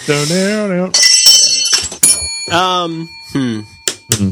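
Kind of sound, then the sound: household object, small bell ringing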